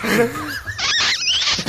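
A dog whines and yelps in a quick burst of high, squeaky, rising and falling cries, loud and continuous for a couple of seconds.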